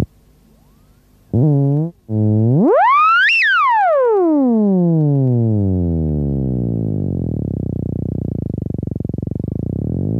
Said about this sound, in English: A teacher mentioned it and said that there was a thing that you can wave your hands around a few antennas and that the thing was called a theremin.